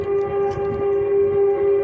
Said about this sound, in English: Sorry about that. We're near the train right now. I'm going to let it go by.